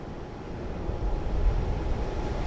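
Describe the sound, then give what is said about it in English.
A steady, deep rumble of an unseen elevated L commuter train rolling past amid traffic noise, swelling slightly midway and holding steady, with no voices. “Oh, there it goes. There goes the L.”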